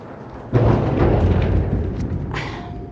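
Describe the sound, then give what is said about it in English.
A sudden heavy boom from an airstrike hits and rolls into a deep, rumbling roar that slowly fades as the home shakes, followed by a second, sharper burst of noise; no voices are heard. “And as you can hear, the home now is shaking, and the explosions, the bombings are everywhere.”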